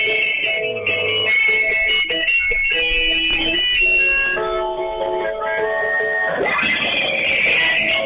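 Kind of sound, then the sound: signal or alarm, wristwatch alarm beeping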